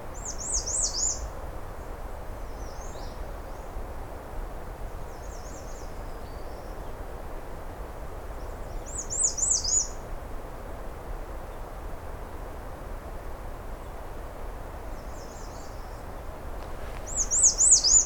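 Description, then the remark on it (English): On a cold, sunny day, a merlin falcon gives several bursts of rapid, high-pitched chattering calls, spaced irregularly, over a steady background rush of wind or water. “Oh, I hear the Merlin.”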